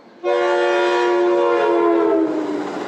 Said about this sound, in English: Northbound train, I got to pause for. He honks that horn right out in front of me.